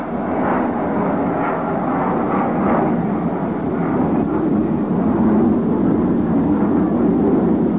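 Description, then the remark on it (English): A loud, steady roar of an airplane passing overhead during a Mets baseball game, holding up the pitch; a broad rumbling drone that holds strong and even for several seconds with no voices present. “he calls down and backs out until a plane gets by.”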